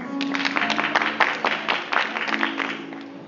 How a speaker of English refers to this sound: Praise God. Hand of applause for them.